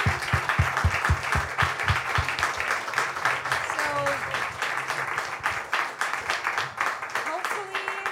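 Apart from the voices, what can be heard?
audience applause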